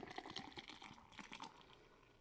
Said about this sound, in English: And I know what some of you are saying, like, what is he doing? Why is he pouring his beer like that?